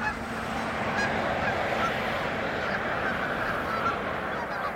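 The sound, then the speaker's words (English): A large flock of geese honks continuously at a marsh in Wisconsin in the morning, a dense, overlapping murmur of calls blending into a steady wash of sound with no talking. “In first collecting in the morning, you hear a murmur of geese in the background.”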